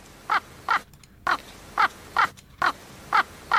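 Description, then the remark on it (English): A raven caws eight times in a steady, evenly spaced series, each call harsh and hoarse with short gaps between, with no voices present. “This is we have a sound effect of a raven.”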